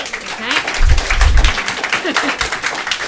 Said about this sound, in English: And I, it's great that you all want to applaud each other, but I'm really keen to get everyone in. So if you could restrain your applause.